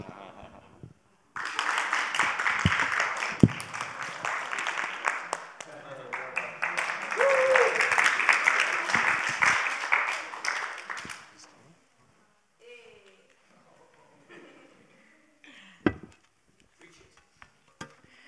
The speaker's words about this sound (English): Deixe nós aplaudir vocês. Let us to clap you guys.